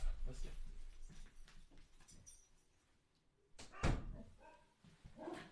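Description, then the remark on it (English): A dog barks in short, loud bursts, with one especially sharp outburst near the middle, mixed with clattering thumps and faint, indistinct voices. “It is bark o'clock.”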